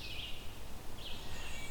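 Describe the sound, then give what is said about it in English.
A faint, high whistled bird song in two short phrases, one near the start and another about a second later, over a steady low outdoor rumble, in the Mahon Tract. “It's a very whistly bird, as you can hear.”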